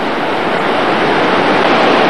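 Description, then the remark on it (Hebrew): Loud, steady rush of a river carrying a great deal of water, on the way to Nevada Falls, a dense continuous roar that stays even throughout with no pauses, unbroken, and no voices. “פה ממש כאן לא היה את הגל הזה, וזה היה נראה כאילו שאפשר לחצות, אבל עכשיו אין מה לדבר, זה פשוט המון המון מים.”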